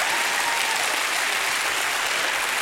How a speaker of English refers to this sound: Somebody, even if you don't like it, just go ahead and clap and act like you do.